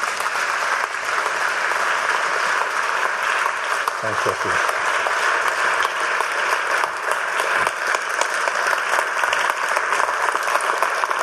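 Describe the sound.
Sustained audience applause, a dense steady clatter of many hands clapping at even loudness throughout, with a brief spoken thanks heard over it.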